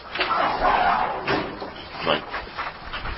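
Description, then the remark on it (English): Paper rustles and crinkles as a child pulls it out of a door, with a few soft knocks and thuds from the door being handled over a few seconds. “My daughter grabbing paper out of the door. My metal desk.”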